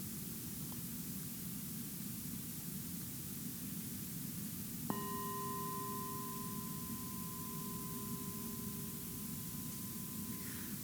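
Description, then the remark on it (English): A meditation bell is struck once to close a meditation practice and rings on with a steady, clear tone that slowly fades, all over a constant background hiss. No one speaks. “close the practice with the sound of a bell.”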